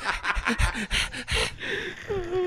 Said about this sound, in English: You're like fucking heavy breathing.